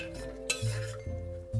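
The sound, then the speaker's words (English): A spoon stirs a pot that has just come to a boil, scraping and clinking against the metal with one sharper clank partway through, over a steady low hum with no talking. “Give it another quick stir.”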